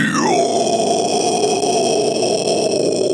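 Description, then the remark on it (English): A metal-style vocal scream, harsh and distorted, held for about three seconds at full volume. It opens on a higher pitch, drops quickly, then sustains as a gritty, growling roar. “Metal Screams.”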